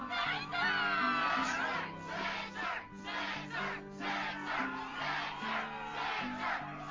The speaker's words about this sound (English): Yes, the crowd is fired up, so you know what comes next.